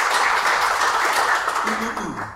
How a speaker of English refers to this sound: Give the Lord a hand clap, man. I tell you what, that's awesome stuff.